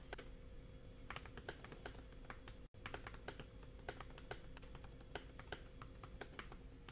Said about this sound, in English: Sounds like you're typing on your iPad keyboard. It kind of does sound like an iPad keyboard, doesn't it? Ah. It's very clicky. Oh, gosh, yes, it is.